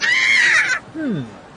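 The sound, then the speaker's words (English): A machine said to let you hear the screams of peanuts gives a shrill, wavering high-pitched scream lasting under a second, then, after a brief pause, a lower voice-like wail that slides downward and fades. “This is a machine that allows you to hear the screams of peanuts.”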